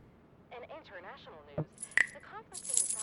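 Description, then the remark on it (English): A voice murmurs briefly, then a few sharp metallic clicks ring out, followed by a bright jangle of keys rattling together in a key cabinet toward the end. “I heard some keys earlier.”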